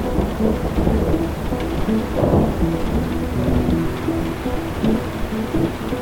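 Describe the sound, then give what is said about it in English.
Steady, dense rainfall hisses throughout while low thunder rumbles and rolls underneath, swelling briefly around the middle. No voices, just a continuous, fairly loud storm. “It was hard to tell which clap of thunder belonged to which flash of lightning. They got louder too. And then, all at once, the rain started in.”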